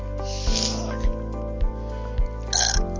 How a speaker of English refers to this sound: Excuse me. Yeah, you're welcome. Cucumber burp. But that was really gross over the microphone.